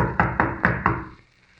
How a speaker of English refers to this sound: Pounding on the door isn't going to do any good either. Whoever's in there evidently doesn't want callers today.